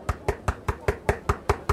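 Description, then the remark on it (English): Rapid, steady knocking on the door of a club, about nine sharp, evenly spaced raps with a solid thud, fairly loud, with no voices; no one answers. “No one's answering. Knock louder?”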